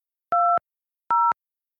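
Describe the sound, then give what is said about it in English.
Two telephone keypad tones, separate steady dual-pitched beeps of about a quarter second each, with a pause between them, as digits of a PIN are keyed in to join a Telelink Conference Pro conference call. No one speaks. “Welcome to Telelink Conference Pro. Please enter your PIN.”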